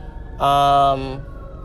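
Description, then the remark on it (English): A loud, brassy blare from a passing fire truck sounds once for under a second at a steady pitch, standing out over a low rumble of street noise. “And fire trucks in particular, as I'm sure you're hearing as one is passing me.”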